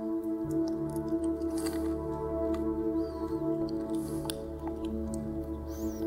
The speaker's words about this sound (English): If you would then, go ahead and take out your communion cup. Peel back the top layer, removing the wafer.